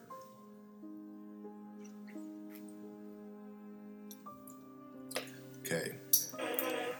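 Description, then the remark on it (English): Soft sipping and swallowing noises of someone drinking a sip of water, with a faint clink of a glass near the end, over a steady low humming drone that runs throughout. “I'm just going to have a sip of water.”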